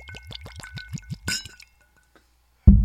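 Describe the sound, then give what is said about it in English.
Liquid glugs in quick rhythmic pulses over big ice cubes from ice trays in a glass in a kitchen, ending in a bright clink of cubes shifting, clear, then a brief quiet before a loud low rumble cuts in. “But we haven't quite invested in our ice program here in our kitchen, but we at least have some ice trays that make big cubes. Yes. And that's all we can count on. So first week here, let's pour it.”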